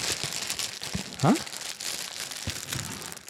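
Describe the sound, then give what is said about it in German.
A plastic bag holding self-adhesive wraps given as consolation prizes crinkles and rustles steadily, a dense crackling texture with a brief squeaky swell midway through. No one speaks. “Es ist eine Plastiktüte.”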